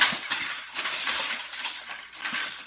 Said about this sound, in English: Sorry, a little bit distracted by my cat fucking with things.